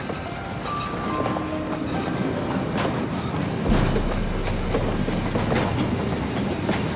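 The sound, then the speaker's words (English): A freight train rumbles steadily past a platform as its caboose pulls alongside, wheels clattering in an uneven rhythm over the rails with occasional metallic squeals and a deep low drone building partway through. “with the caboose pulling alongside the platform, Smith climbs aboard”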